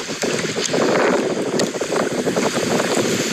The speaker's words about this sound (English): Yeah. It's a windy day on the pond.